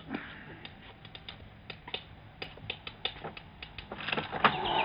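A window rattles as a bird tries to get in, a quick, irregular run of sharp taps and clicks building into a denser, louder clatter near the end, with no voices present.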